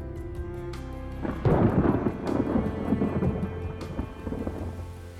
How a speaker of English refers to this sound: They hurried into a small cave, soaked in rain, wringing out their clothes. They laughed at the sudden downpour and sat to wait out the deluge.